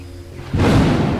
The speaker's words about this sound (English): Ooh, that thunder out there is getting kind of scary.